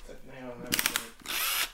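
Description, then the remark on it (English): A power drill whines up, then breaks into a rapid, rattling burst of percussive hammer action, followed by a longer loud grinding run, harsh. “You got the old hammer function on this drill, haven't you?”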